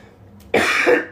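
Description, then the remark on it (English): A man's harsh cough erupts after a brief quiet moment while he smokes, a rough rasping burst followed by the start of another, with no talking. “He just coughs a lot when he smokes.”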